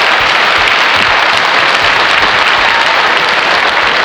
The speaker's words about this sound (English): But first, with me as always, give me a big round of applause for my main man from Almost Wise Guys Central,